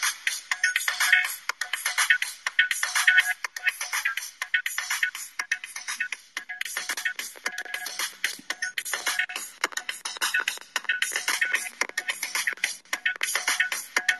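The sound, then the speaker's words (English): A song plays through a small phone speaker, thin and tinny with no bass, its steady rhythmic beat and melody continuing throughout at moderate volume with no one talking. “It doesn't sound so good coming out of my phone.”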